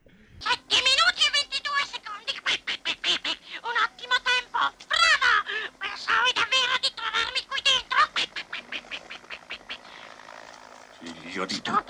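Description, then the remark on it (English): A person imitates a duck's quacking voice in a rapid stream of raspy, nasal syllables, loud, chattering steadily for several seconds before trailing off; it is the duck voice that Faye's boyfriend does with his daughter. “The duck voice is what Faye's boyfriend does with his daughter, who is handicapped.”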